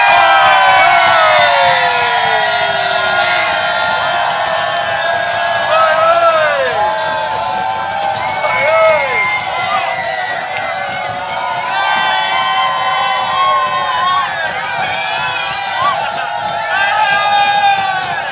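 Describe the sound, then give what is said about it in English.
A large crowd cheers and shouts at full volume on a docked boat in London after the last tune, a dense roar of overlapping voices with high whoops and yells rising and falling for about eighteen seconds. “It's your opportunity to make the most noise you've ever made in your lives on a boat in London.”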